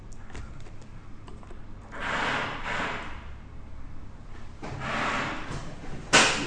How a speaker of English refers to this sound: They're drilling, they're fixing benches, I think, but again, they couldn't pick a better time to do it, I guess.